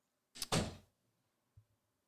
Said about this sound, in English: But at the same time, that was just my door slamming shut.